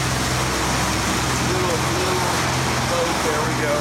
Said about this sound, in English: we've got a little boat that's gonna be coming by, so you're gonna be hearing some noise because we're on the river. In fact, just show the boat.